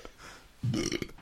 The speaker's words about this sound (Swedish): Rapar lite. Och det är lite illa där direkt. Den är jag vet den doften, den är inte rolig.